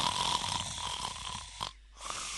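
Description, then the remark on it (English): A voice imitates snoring with a drawn-out, raspy inhale, then a short pause and a quieter rasp, with no other sounds. “Boring, need to snore now.”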